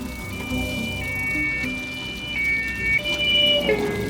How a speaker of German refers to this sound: Als sie sich dem Ort näherten, wurden sie von einem Streifenwagen der Polizei und einem Unfallwagen überholt.